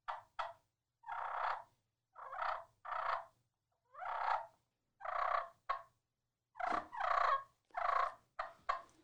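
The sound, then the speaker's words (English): A hand-worked specialty friction turkey call, held close to the mic, makes a series of scratchy clucks and rolling purrs, short bursts separated by brief pauses, with no talking. “And here's a cluck and purr. So this is, again, a specialty call. It's not going to do anything but clucking and purring.”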